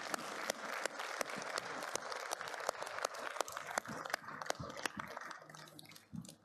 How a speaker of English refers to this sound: Come on, let's give the Lord a big clap today, huh?